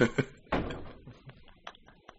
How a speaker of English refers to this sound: I knew that door was going to open. I felt it.